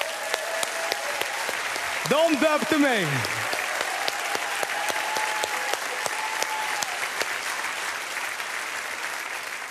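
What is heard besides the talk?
audience applause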